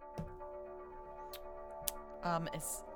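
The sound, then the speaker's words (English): A couple of small, sharp taps as a die falls out of a player's hand and rattles onto paper during a luck roll, faint over a steady background hum, followed by a brief voice and a soft hiss. “I feel like I just heard a die hit paper.”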